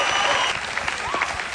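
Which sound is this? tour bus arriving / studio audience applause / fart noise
studio audience applause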